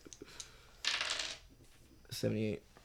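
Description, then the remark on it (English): Dice clatter and tumble across a hard tabletop in a short, rattling burst as two players roll them, followed by a brief voiced sound from someone. “I need both of you just to roll dice.”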